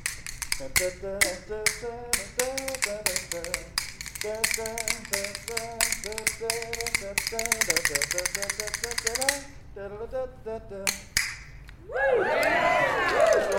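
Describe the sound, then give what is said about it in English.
Rhythm bones, two cow rib bones cut to length and held between the fingers, clack in fast, crisp rattling patterns as the wrist moves, the loose bone striking the tight one, for about nine seconds over a steady tonal melody, then pause briefly before a person starts talking. “So it's like two cow rib bones cut down to the right length.”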